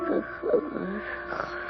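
Slow, rasping breaths with a wet gurgle, the rattly, congested breathing of an old woman lying in bed, rising in soft rough swells over a low, steady hiss.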